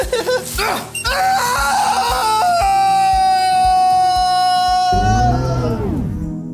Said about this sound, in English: And listen, do you hear that squeaky wheel? What an embarrassment.